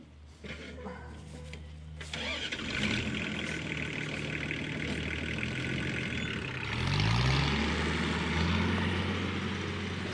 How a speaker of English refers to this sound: And so right now you can hear the tractor, and it's going basically down the crop, digging up the kaiwa, or the Māori potatoes.